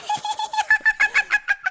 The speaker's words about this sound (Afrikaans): Dit is 'n fluit. Ja? 'n Fluit is een van die blaasinstrumente.